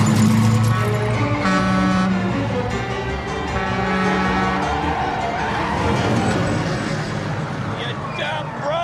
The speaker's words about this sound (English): Now, normally, you would not be going 65 down the wrong way of a one-way street. Apply the brakes. Now, put it in reverse.